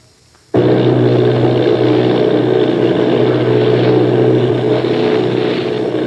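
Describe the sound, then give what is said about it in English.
After a brief near-silence, the engines of bombing plane V-843, one of 8 bombers, off Bayonne, New Jersey, cut in abruptly with a loud, steady droning roar that holds unbroken to the end, deep and throbbing, with no voices. “Bombing plane V-843 off Bayonne, New Jersey. Lieutenant Bolt, commanding 8 bombers, reporting to Commander Fairfax, Langham Field.”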